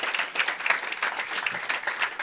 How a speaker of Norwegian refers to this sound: Ikke det vært en applaus?